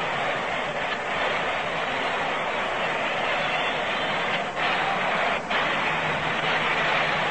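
A baseball stadium crowd applauding Albie Pearson's double to the fence and Willie Mays's fielding, a dense, steady wash of clapping and cheering that stays loud throughout with only a couple of brief dips, and no one talking over it.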